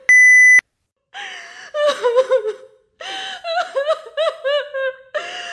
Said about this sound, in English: You have selected 1. Record post. Begin recording at the tone.